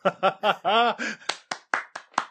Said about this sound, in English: Yes, applause. I'm not even going to groan, that was tremendous.